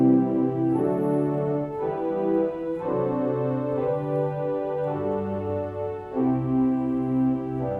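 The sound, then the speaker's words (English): String stops on a pipe organ's swell division play sustained, rich chords that shift roughly every second, a steady, moderately loud bowed-like tone with no talking over it. “And then a sort of little bit bigger sound comes in the swell division.”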